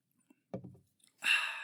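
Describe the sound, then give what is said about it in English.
A short sip and gulp of beer, followed by a breathy, satisfied exhale. No one speaks. “So before we get into Pittsburgh, I got to take a sip of beer here.”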